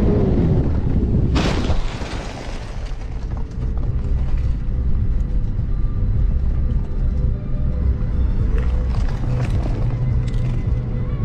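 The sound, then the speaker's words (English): A single loud, sharp crash as a car going straight T-bones another car making a left turn, then a steady low rumble of engine and road noise carries on, with faint rattles and clatter later. “He has T-boned her car and she has not reacted.”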